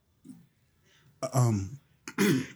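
A person clears their throat twice: a faint low rumble first, then two loud, harsh rasping bursts about a second apart.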